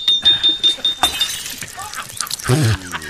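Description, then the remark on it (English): A glass jar smashes as it is tapped against a tree to loosen its stuck lid, a bright crash followed by scattered clinking shards tinkling down, then a short voiced cry near the end. “The lid won't budge, sir. Just tap it against the tree.”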